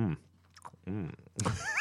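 Someone chews gummy candy right into the mic, with sticky, wet mouth clicks between drawn-out, muffled "mmm" vocal sounds. The hums are fairly loud and rise and fall in pitch.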